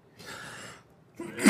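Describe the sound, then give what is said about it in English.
A single sneeze: a long breathy intake, a short pause, then a sharp, loud explosive burst at the end. No talking. “Bless you.”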